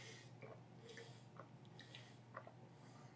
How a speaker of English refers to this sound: A big drink of water.